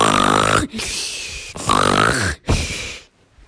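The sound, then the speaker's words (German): Loud snoring imitated by a voice: two long rasping snorts, each followed by a breathy exhale, in a steady rhythm before fading to quiet. “Okay, sie gingen hinein und hörten wieder mal ein riesiges Schnarchen.”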